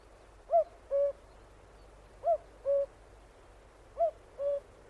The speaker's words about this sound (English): He especially loved the cuckoo, which sent its voice of mystery from out the woodland depths and wide open spaces, calling nature to rejoice at the advent of spring.